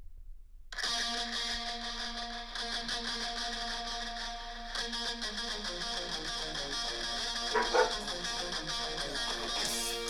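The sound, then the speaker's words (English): A pet dog barking mixed into a loud, dense song, starting after a brief moment of silence and continuing without a break to the end; no one speaks. “That's the jungle of our dog Jack.”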